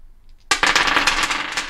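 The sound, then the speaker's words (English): After a brief quiet moment, several dice spill loudly onto a wooden desk, clattering and skittering in a dense burst of rapid clicks and knocks that continues to the end. “Not only are they dice hitting wood, But they are hammers hitting bells.”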